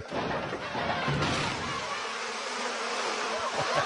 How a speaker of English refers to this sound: They dump over the truck and they knock open a container of bees.